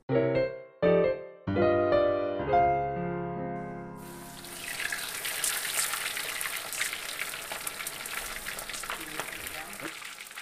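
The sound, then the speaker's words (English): A few seconds of bright tonal notes give way to the steady, crackling hiss of six small wrapped, burrito-like pockets frying in a pan. The sizzling is fairly loud and continues to the end. “We're going to fry these guys and then come back.”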